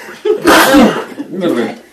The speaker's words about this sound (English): Bless you.